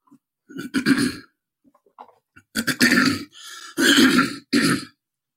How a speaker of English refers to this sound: Next time I clear my throat, I'm not going to do it anymore.